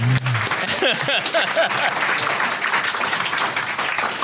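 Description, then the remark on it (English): A small group applauds steadily for a few seconds while mini eggs are passed around, a dense patter of hand claps at even loudness throughout, with a brief voice audible at the start. “Just clap while they pass the eggs around.”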